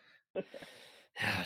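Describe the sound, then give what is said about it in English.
A person makes an exaggerated, theatrical gasp: a breathy vocal burst, then a brief pause and a second loud, sharp intake of breath, clear with no other talking. “You caught me. God. Gasp.”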